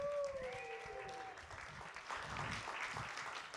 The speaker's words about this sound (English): Welcome, everybody. Let's get a real round of applause up in here.